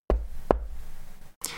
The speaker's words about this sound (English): Camille yells at her and proceeds to bash her head against the wall.